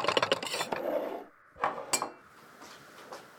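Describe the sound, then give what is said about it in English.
Dishes and candles being cleared from a table: a quick run of clinking and scraping, then a pause and two sharper clunks as items are set down. No one speaks. “I'll clear the candles and dishes.”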